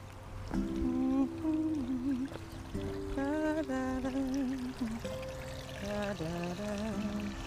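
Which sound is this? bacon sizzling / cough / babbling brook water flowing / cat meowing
babbling brook water flowing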